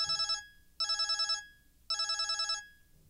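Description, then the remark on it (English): A telephone rings three times in short bursts, each ring a rapid warbling trill with brief pauses between, a call from a prospective employer about a job. It's fairly clear, with no talking. “And then I got the phone call.”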